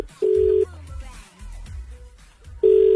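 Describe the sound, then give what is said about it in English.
A telephone number being dialed, heard as two steady, fairly loud electronic phone tones with a quiet gap between them and low background rumble. “Ready to call?”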